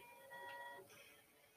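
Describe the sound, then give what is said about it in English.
A video game car horn gives one steady, buzzy honk of under a second, a bright tone with stacked harmonics, then cuts off into faint background noise. No one speaks. “Oh, I didn't know you could honk in this game.”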